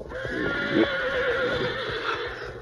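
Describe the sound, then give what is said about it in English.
Several horses whinny and snort restlessly as they smell smoke and see a wall of flame creeping toward them, their neighs overlapping in a continuous agitated chorus, with faint hoof shuffling beneath, steady in loudness. “Meanwhile, the horses, smelling smoke and seeing the wall of flame creeping toward them, began to fuss and fret.”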